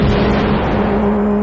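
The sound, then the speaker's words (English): A loud, sustained sci-fi barrage as a spaceship opens fire with all its cannons: a dense rumbling blast layered over a steady low electronic hum, with no voices present. “Opening fire. All cannons.”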